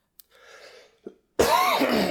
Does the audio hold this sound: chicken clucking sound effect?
no